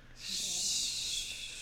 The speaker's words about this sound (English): She snores like my watch dragon, but I've never seen anything so lovely in my entire life.